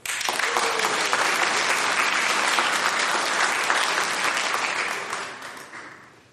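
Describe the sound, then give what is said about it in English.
An audience applauds wildly, a dense, loud wash of clapping that holds steady for several seconds before tapering off toward the end. No one speaks over it. “The audience applauded wildly.”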